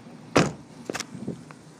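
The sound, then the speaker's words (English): A heavy clunk of a gate slamming shut as a car is pulled out, followed by a few lighter metallic rattles and clicks, with a faint vehicle hum behind and no talking. “Why don't you, pull that car out? And then I'll hop in when you get out there. I'll close the gate.”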